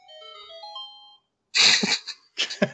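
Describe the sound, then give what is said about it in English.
A phone's electronic ringtone plays a short, bright melody for about a second and cuts off, followed by two loud, harsh, breathy bursts. “Damn phone.”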